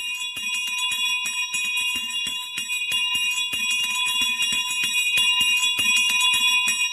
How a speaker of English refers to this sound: Catherine Doherty's memory of the first church bells.